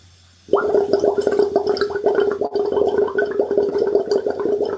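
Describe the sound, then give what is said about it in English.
After a brief quiet moment, someone blows steadily through a straw into water as a breath-control exercise, producing a loud, rapid, continuous bubbling of quite large bubbles with a low gurgling hum that lasts about four seconds. No one speaks. “And those bubbles are quite large. Mm. Can you maybe make them a little bit smaller by blowing a bit more gently?”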